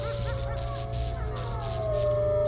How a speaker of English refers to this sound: What's that sound? It's a dog of some sort, I think. No. No, it must be one of the aliens. And someone is shocking it.